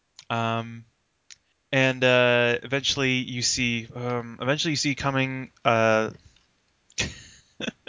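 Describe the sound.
A voice imitates a spacecraft command module hatch sequence: a loud, heavy thump, then a run of clicking, locking noises, and finally a short hissing rush of repressurization.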